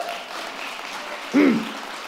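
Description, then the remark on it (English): An audience applauds in a steady, dense wash of clapping, and a short cheer or whoop from the crowd rises briefly above it near the end. “So we should all give applause.”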